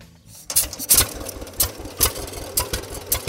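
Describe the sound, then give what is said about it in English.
A 1946 John Deere BO crawler tractor engine runs in North Central Illinois with a slow, steady chugging beat, each exhaust pop sharp and loud, repeating about twice a second with no one talking. “check out a 1946 John Deere BO Crawler”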